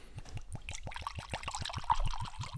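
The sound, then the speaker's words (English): Liquid pours from a bottle, held at an odd angle, into a glass with a rapid, glugging rhythm of about a dozen pulses, moderately loud, with no one speaking. “The problem is I'm pouring at a weird angle, so.”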